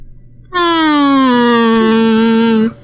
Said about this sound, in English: Can you do me a favor and play that really sad sound on your kazoo for yourself, please?